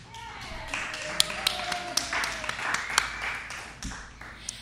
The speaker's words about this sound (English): We got some applause for children.